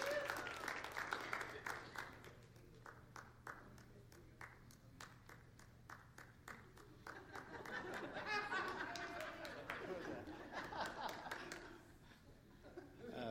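An audience breaks into steady applause, many hands clapping in a dense, crackling wash, with scattered laughter and chatter mixed in before the clapping thins out.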